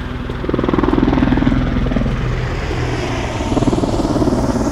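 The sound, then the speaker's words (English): Loud, continuous helicopter rotor and engine noise with a rapid, steady thumping pulse over a deep roar, heard from the back of the helicopter where rescue swimmers get dressed in their swimmer gear, no voices. “The way it works is we sit in the back of the helicopter, we get dressed out into our swimmer gear.”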